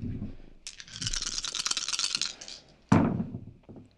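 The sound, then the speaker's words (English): Dice rattle steadily for about two seconds as they're shaken, then clatter onto a hard surface with a sharp impact and a brief tumbling settle, as a player rolls enemy dice for an attack in a tabletop dice game. “I have to roll all 3 enemy dice, though.”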